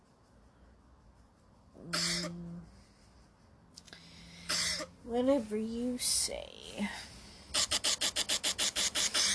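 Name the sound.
coughing and throat clearing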